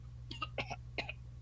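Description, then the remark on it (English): A voice mimics coughing and sputtering something potent up in three quick, breathy bursts over a steady low hum, fairly quiet. “You cough and sputter it up.”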